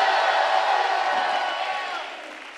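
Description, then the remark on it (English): A church audience gives God a shout, cheering together in a dense wash of many voices with some clapping mixed in, loud at first and gradually fading over a few seconds. “Give God a shout.”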